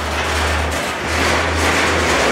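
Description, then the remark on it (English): A baggage tug's engine drones steadily through one of two 7,000-foot baggage tunnels under DIA airport, a constant low hum under a broad wash of echoing road noise, with no one talking. “It reminds you of an actual freeway system.”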